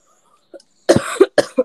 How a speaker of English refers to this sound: Bless you. I was coughing. Bless you, my dear.